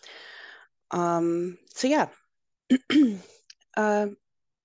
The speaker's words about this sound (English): So I'm sorry, I need to cough again. Okay, sorry about that. Hope I'm not getting sick. I think this is just the weather's changing here. So I think that's all it is.